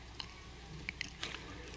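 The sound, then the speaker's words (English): Soft plastic crinkling as a small sealed plastic communion cup is peeled open, with a few brief crackles and snaps spread over a quiet moment, no voices. “And I want you to, I know it's plastic and it's like a rip and sip and it's weird, but I want you to look at this little piece of bread.”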